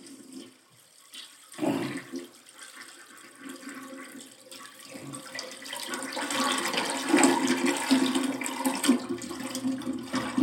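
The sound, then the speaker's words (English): A toilet flushes: a short clunk of the handle, then rushing, gurgling water that builds steadily and keeps roaring loudly to the end, with no voices. “And there go the Miami Heat right down the toilet. And then the back flush. I love the sound effect.”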